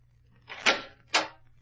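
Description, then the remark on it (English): A door opens for a visitor in a Sherlock Holmes story, with two quick sounds about half a second apart: a scraping latch or swing, then a second sharp clack, over a low steady hum with no talking. “Someone's at the door, Watson.”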